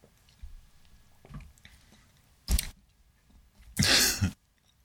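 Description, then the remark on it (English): Wet chewing of a crunchy mouthful of about half a bag of Cheetos, with low mouth noises and two loud bursts of crunching, the second long and harsh; no talking. “And so I put half a bag of Cheetos in my mouth at once.”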